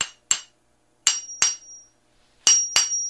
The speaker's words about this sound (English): Number 1, hammer and chisel. I have a hammer and chisel. Okay, give it a try.